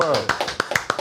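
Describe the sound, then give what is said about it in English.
A few quick hand claps from the hosts clapping for themselves, about four or five sharp slaps in a fast, slightly uneven rhythm, following a brief bit of voice at the start. “We got to clap it up for ourselves.”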